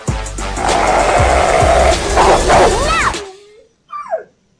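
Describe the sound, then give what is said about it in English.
A dog barks and yelps through a loud, rough wash of noise, then after the noise cuts out, gives one short, high whining yelp alone. “I think the baby just broke a dog, Sue. Good doggy.”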